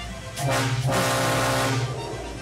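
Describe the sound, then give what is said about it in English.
The Matterhorn theme park ride rumbles past like a train: a loud, steady roar with a low droning, horn-like tone running through it for about two seconds, with no talking. “Okay, that was like a train. Oh wow, okay, can you give me a theme park?”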